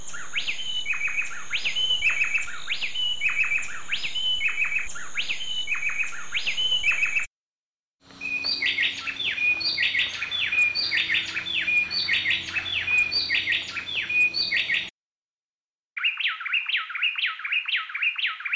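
Two bay wrens, a female and a male, sing a fast antiphonal duet, their bright, whistled phrases alternating in a tight repeating rhythm, clear, with brief pauses between three bursts of song and no talking.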